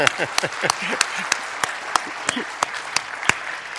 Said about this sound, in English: If we're going to applaud her, we need to applaud her. Let's applaud her.